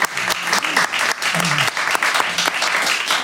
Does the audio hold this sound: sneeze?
no